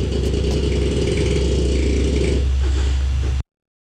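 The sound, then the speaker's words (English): A small dog named Basil lets out one long, loud snore, a deep, rattling rumble that holds steady for a few seconds, shifts slightly near the end, then cuts off abruptly. No one speaks. “All right, listen, one more big snore and then back to Christine.”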